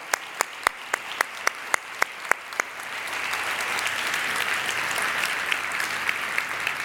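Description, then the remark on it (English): A few sharp, evenly spaced claps ring out, then a large audience breaks into dense, sustained applause for military veterans standing in the room, steady and fairly loud without any talking. “Hold the clap. We're going to do it together.”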